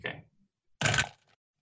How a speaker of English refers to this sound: Okay, so I'm rolling 3 dice, and I need to get 1 success.